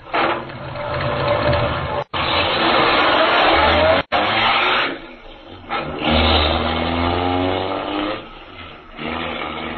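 A car carrying Major Carroll and his men speeds away from the inn toward the forest road, its engine roaring and revving loudly, the rumbling drone rising and falling in pitch over several seconds, with a couple of abrupt breaks.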